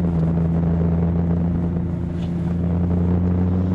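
A steady, droning car engine hums continuously while driving on Kuehl Street, with a strong low tonal rumble and constant road noise, no voices present.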